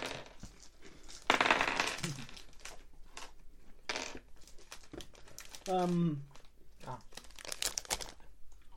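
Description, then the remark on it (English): Dice rolled for a listen check rattle and clatter across a tabletop in a burst of sharp taps, with scattered hits continuing afterward while a voice murmurs briefly in the background. “Oh, crap, they landed on my listen stat.”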